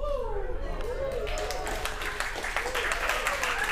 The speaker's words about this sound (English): That wasn't an applause line, but thank you.